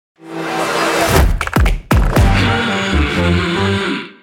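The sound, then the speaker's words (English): A brief wash of crowd noise, sampled from the audience at Mumbrella 360, opens a short audio logo, quickly overtaken by deep thumping hits, swooping low tones and a steady musical tag with no talking. “So what you may not have realized was the first sound that you hear is actually crowd sound from Mumbrella 360.”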